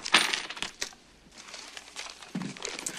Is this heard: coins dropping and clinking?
yes